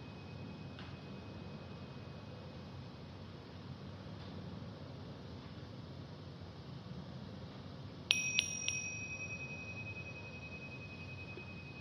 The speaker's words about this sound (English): Noticing how sounds arise and vanish, leaving no trace. Including the appearing and disappearing of the gong.